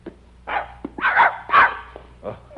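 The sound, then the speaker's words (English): A dog named Lazarus barks about four times in a loose, uneven rhythm, the middle barks loudest, over a faint low background hum. “Good dog.”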